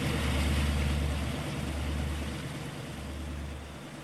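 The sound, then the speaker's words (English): A motorboat's engine roars loudly, a steady droning hum with a rushing wash of water, swelling slightly and then easing back as it speeds along, fast approaching over slow-moving water. “A boat is fast approaching.”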